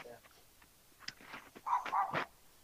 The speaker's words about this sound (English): This poor doggy's stuck outside. Oh. Oh, no. Dude, I just saw a dog that's stuck outside. Well, the lady has the door open, so it looks like she's just letting him out to go pee.